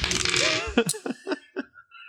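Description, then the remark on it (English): A hard object clatters onto a table and bounces several times in quick succession, each tick smaller and quieter, as a die is rolled for a check and lands on 16. Nobody is speaking. “See, now the dice is cooperating with me. I got a 16.”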